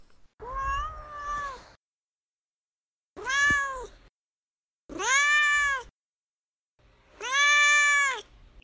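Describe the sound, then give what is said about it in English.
A cat named Duarte meows four times, each call long and drawn out with short silent gaps between, loud with no talking. “All right, and now we'll move on to Duarte's Corner, where my cat Duarte will chime in with his opinion.”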